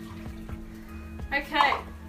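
household object, water running

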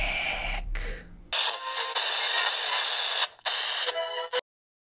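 sound effect, radio static

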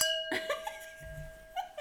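household object, glasses clinking together

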